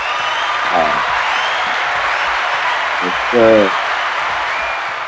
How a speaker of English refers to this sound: You make me feel like a superstar with the claps, man. That's right, man. Well, we hired them just for you.